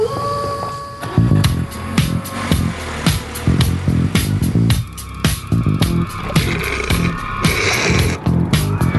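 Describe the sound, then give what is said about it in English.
The engine of a new Hyundai Genesis car roars loudly as the vehicle pulls away, with rapid rhythmic revving and a brief squeal of tires, continuing steadily for several seconds with no talking. “Why don't you go ahead and take my new car?”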